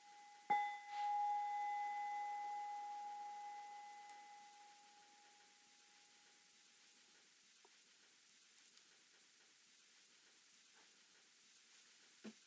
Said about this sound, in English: nearby, and distant sounds, bells.